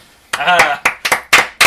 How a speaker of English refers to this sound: Okay, I'm going to extend that applause break for 5 minutes.